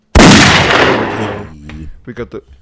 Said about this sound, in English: We got the gunshots back.